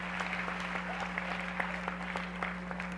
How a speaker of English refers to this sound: Clap loud, you single people. Praise the name of Jesus.